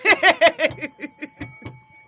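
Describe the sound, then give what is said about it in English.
A small bell rings with a bright, sustained metallic tone, struck a few times in quick succession, following a burst of laughter. “You and this bell.”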